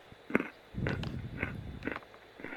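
Wet, crunchy chewing of waffles, with several soft bites and mouth sounds in an irregular rhythm, fairly quiet with no talking.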